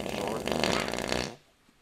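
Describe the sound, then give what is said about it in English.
A loud, sputtering fart-like noise lasts just over a second, broad and buzzy, made by hand rather than a real fart, then cuts off into near silence. “Okay, still a hand.”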